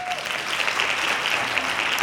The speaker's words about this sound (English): Hand claps.